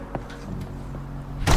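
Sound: door slamming shut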